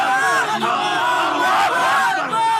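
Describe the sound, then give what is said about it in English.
A large crowd in Tripoli, Libya, cheers and shouts in celebration and relief, a dense, sustained roar of many voices with high whoops and chants layered over it, loud and unbroken throughout. “And here in the capital, Tripoli, an explosion of relief and joy.”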